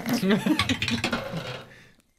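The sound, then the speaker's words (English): Dice clatter across a hard tabletop, a quick run of bright rattling clicks that slows and settles into silence after about two seconds, with faint voices murmuring underneath. “That dice hates you too.”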